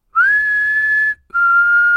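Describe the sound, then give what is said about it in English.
A person whistles two long, drawn-out notes, the first sliding up into a steady pitch and the second slightly lower after a brief pause. The tune is loud, close and eerie, with no talking. “The episode of Supernatural is Season 14, Episode 16, and the whistle goes something like this.”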